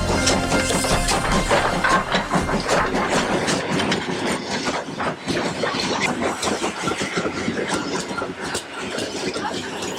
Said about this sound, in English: The Encouragement Express train has pulled in.